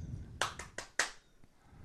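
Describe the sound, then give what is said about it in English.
Several sharp hand claps in an uneven sequence, about five distinct slaps, with a low background rumble and no voices. “It's just because you don't want to clap, right?”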